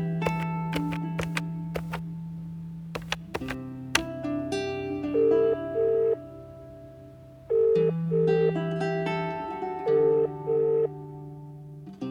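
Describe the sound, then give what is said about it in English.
A telephone ringing tone sounds in repeated double bursts, clear and steady, over a bed of sustained, droning musical tones. No one speaks. “She calls up Ruth.”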